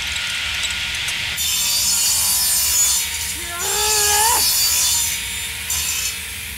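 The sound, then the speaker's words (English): A drill saw grinds into a fortified metal door, a steady harsh rasping hiss with a rising motor whine that briefly climbs in pitch midway, loud, with no voices. “Where's that drill saw thing of yours? Here it goes.”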